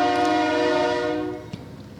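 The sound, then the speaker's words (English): A loud, sustained train horn blares with a rich harmonic tone, then fades as the train passes a house beside the tracks, making the house shake, leaving rumbling rail noise and a brief clank. No voices are heard. “We live on a train track. Like, I'm not even kidding the you. The house is in the middle of the train tracks.”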